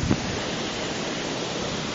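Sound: ocean surf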